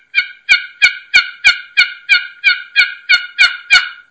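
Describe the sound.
A box call sounds a turkey hen's assembly yelp, played with real short, choppy strokes: eleven loud, choppy yelps in a steady, even rhythm, clean, with not a lot of rasp and no talking over them.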